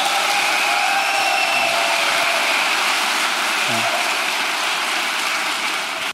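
A crowd applauds in a steady, dense wash of clapping that holds at an even loudness for about six seconds before cutting off abruptly. No one speaks over it.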